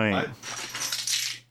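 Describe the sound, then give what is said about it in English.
A bunch of keys jangles and clinks for about a second, bright and metallic, as a man picks them up to leave, right after a short burst of someone's voice, with a faint low hum underneath. “Keys, you're like leaving. Gets his keys.”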